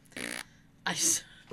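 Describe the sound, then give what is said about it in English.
Two short, buzzy fart noises blown with the mouth, a raspberry sound followed by a breathier, hissing one, fairly loud with a brief pause between them. “Again with the fart noises.”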